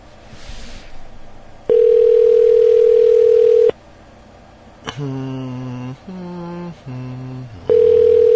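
A phone line ringing on an outgoing call: a loud, steady electronic tone sounds for about two seconds, pauses, then a buzzier tone in short segments, and the steady tone returns. No one speaks.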